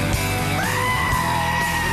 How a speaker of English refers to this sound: Hold on, that was one of your screaming goats.